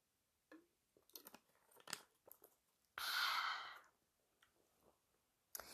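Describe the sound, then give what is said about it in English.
Someone takes a sip of water: a few small clicks and crinkly handling noises, then a loud, breathy slurp lasting about a second, followed by quiet and one last click. “I need a sip of water first.”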